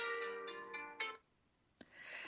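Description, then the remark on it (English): An electronic alarm tone chimes in a rapid, repeating melodic pattern of bright, steady notes for about a second, then cuts off, followed by a brief click and soft rustling. “And that's where, sorry, I had an alarm set that I forgot about.”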